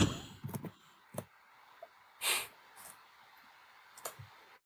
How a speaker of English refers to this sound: Someone is just slapping that keyboard, boy. That's funny.